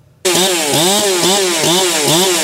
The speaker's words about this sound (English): The echo of chainsaws can be heard across BC as the mayhem from Thursday's storm continues. 5 trees on the road with live wires.